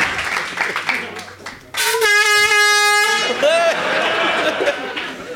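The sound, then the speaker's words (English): A loud, sustained air horn blast of about a second, sounded to mark the winner of a quiz game, cuts in abruptly with its steady harmonic tone over a noisy background of voices and crowd chatter before fading back into talk. “Hit that air horn.”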